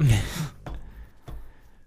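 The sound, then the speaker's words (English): A dog lets out a noisy, breathy yawn, a brief groaning exhale followed by two soft mouth clicks and a faint thin whine trailing off. “Your dog's making crazy noises. Probably yawning.”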